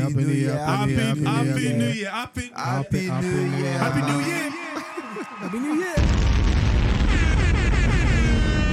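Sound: echo effect on voice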